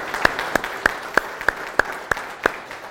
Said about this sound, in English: So I'd like to give them a round of applause for all of their help.